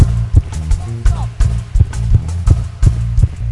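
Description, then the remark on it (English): An audience stomps their feet together in a steady rhythm during a service, producing loud, repeated low thuds about every third of a second over a sustained musical background from the band. “I want us to do one more thing, and that is stomping our foot.”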